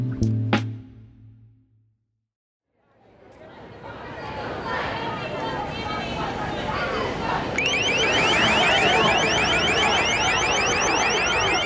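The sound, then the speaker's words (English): A loud, piercing high-pitched deterrent tone suddenly kicks in partway through and keeps sounding steadily over a bustling background of crowd chatter and street noise at a protest. “The Deterrent Tone”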